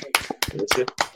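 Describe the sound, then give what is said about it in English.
A few people clap briefly together for the speaker's young son, who is about to ask a quiz qualifier question, a quick scattering of sharp hand claps that sounds like a small group applauding, with some voices mixed in underneath. “So a wee round of applause for my boy here.”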